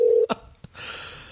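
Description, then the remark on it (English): A single short telephone keypad beep, loud, as someone dials a phone number, then a couple of sharp clicks and a steady hissing line noise that carries on to the end. No one speaks. “Well, luckily, I'm in the comedy business, and I have his phone number.”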